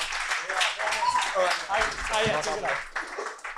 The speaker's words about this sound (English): One more round of applause for TJ Miller, guys. He just dropped in. That can happen anytime you're here at Stand Up New York Comedy Club.